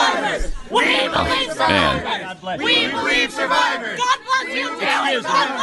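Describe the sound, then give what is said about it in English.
A crowd of protesters yells and chants in loud, overlapping voices at Ted Cruz and his wife as they try to have dinner at a restaurant in Washington, D.C., with strained shouting rising and falling continuously and scattered chatter mixed in. “And this is all being yelled at Ted Cruz and his wife when they're just trying to go out to dinner in Washington, D.C.”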